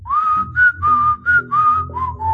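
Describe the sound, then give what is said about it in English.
A short whistled call, a lizard's little call made with puffed-out cheeks: about six clear notes in quick succession, opening with an upward slide and ending on two slightly lower tones, fairly loud over a faint low hum. “And the lizard puffed out his cheeks and began to whistle a little call.”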